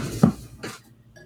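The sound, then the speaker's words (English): A lotion bottle is knocked over on an unsteady little table beside a recliner chair, with a dull, low thump, followed a moment later by a softer rattling knock, then near silence. No one speaks. “Sorry, knocked some lotion over.”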